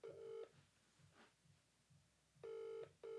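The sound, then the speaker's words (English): A phone line ringing through a handset: steady electronic ring tones in short bursts separated by a long pause, clear and fairly loud, with no one picking up and no voices. “didn't answer your phone call.”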